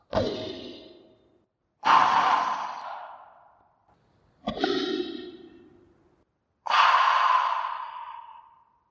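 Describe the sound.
A voice imitates a mechanical breathing apparatus: four slow, heavy, hissing breaths alternating in and out at a steady rhythm, fairly loud, with short silences between and no talking.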